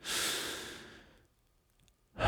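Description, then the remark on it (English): A deep, airy breath exhaled audibly over about a second and fading out, followed by a brief pause and the start of another breath, taken while focusing on the breath. Clear, with no talking. “So you're breathing in.”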